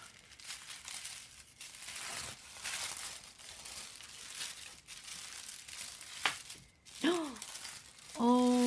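Steady rustling and crinkling of packaging as a tea package is unwrapped, with bursts of crackly paper noise, then a brief voice sound near the end.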